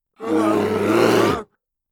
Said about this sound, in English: Grizzly bear! That was it. I had become a bear. Was still becoming a bear, because the morphing was not completely done. What am I? I shouted. But the sound that came from my mouth was not human.